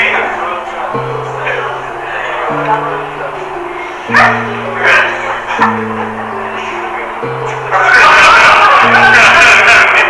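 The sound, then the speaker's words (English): A person vocally imitates two dogs having makeup sex during a comedy set, going back and forth with short barks, yips and whimpering sounds in a loose rhythm, followed by a burst of audience noise near the end. “You guys ever hear two dogs having a makeup All right, so when you listen back to this, find out if you said, do you ever hear two dogs having makeup sex twice in that set?”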